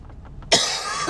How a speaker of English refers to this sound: Sorry, no cough button.